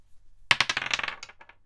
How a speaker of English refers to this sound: First of all, though, we need to determine what the root note for the melody is, and so I'm going to do this by rolling a dice.